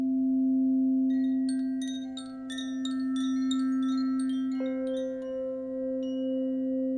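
During a sound bath session, a steady, resonant hum from bowls sustains throughout, while bright chimes ring in a loose, repeated pattern of shimmering high notes above it. The tones are loud and continuous, with no voices.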